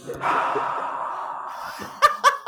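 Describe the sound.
Someone does an exaggerated heavy-breathing act: one long, loud, breathy exhale, then three quick, sharp panting gasps in a row, with no other sound around it.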